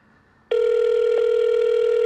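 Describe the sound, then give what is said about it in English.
A steady electronic phone tone starts after a brief quiet moment and holds unbroken to the end, loud, a call ringing out on the line as someone phones a bare-knuckle fighter. “I'm calling him. You're going to hear everything.”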